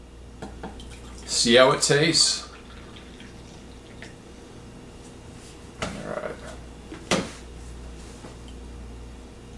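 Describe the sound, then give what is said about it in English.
Danger Coffee, a remineralized, mold-free coffee, pours into a cup in a short burst of splashing liquid lasting about a second, followed by a few faint knocks and a brief spoken remark. “Pour it.”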